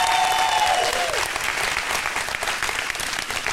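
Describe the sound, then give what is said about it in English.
A large crowd applauds steadily, a dense wash of clapping, with a brief high whistle-like tone sliding downward near the start; the audience is giving a hand clap of praise to everybody in the sound booth. “Listen, we were working on our projector system for all day Friday, all day Saturday, last night till 10:30, and y'all look up at the sound booth and give everybody up there a huge hand clap of praise.”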